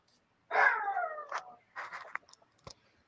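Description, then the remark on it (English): A small chihuahua in the background lets out a drawn-out, sliding yelp followed by a few short, choppy yaps, fairly quiet, with no one talking. “Yeah, my little chihuahua is quite a yapper.”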